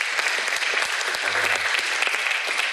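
A crowd applauds a volunteer who came to the front, steadily, dense overlapping claps forming a loud, continuous wash of noise that holds its level throughout, with a brief low murmur underneath partway through.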